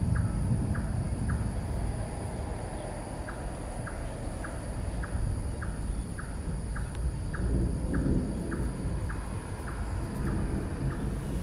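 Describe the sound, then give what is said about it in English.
Deep, low thunder of a Singapore thunderstorm rumbles steadily, swelling slightly toward the end, while a regular series of faint high clicks ticks along above it. No one speaks. “don't think I had ever experienced a thunderstorm quite like the ones that you have here in Singapore.”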